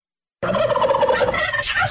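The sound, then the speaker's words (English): A turkey gobbles loudly, a rapid warbling call that rattles on for over a second with no one speaking. “Let's eat the bird is what we heard. It's turkey, turkey, turkey.”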